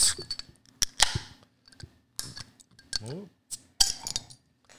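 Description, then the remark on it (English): Several sharp, bright metallic clinks of 12-fluid-ounce aluminum cans of Bavarian-style Märzen beer knocking together in a toast, irregularly spaced, with brief bits of voice between the hits. “Cheers. Metal on aluminum.”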